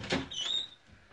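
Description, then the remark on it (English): A door sound: a short knock-like clunk followed by a high, thin squeak of metal as a person locks the door, then quiet. “And she's at the door and actually locked it.”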